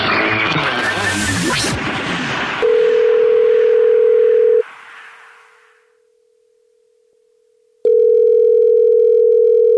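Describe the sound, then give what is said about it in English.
A brief noisy jumble gives way to a loud, steady telephone tone that drops to a faint hum, then the tone returns sharply near the end, with no one speaking, as the Jubal Show calls a listener back. “you texted us at 41061 and said you had a dirty little secret. So now we're calling you back”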